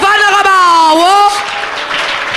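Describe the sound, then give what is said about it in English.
A loud, drawn-out voice holds a tone, then an audience breaks into a dense wash of clapping for the Lamb of God that continues steadily to the end. “Come and clap for the Lamb of God.”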